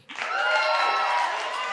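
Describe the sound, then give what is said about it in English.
A burst of applause starts abruptly and holds steady for under two seconds, a dense wash of clapping mixed with high, sustained cheering and whooping voices. “Round of applause, man.”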